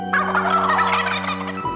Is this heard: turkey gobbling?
yes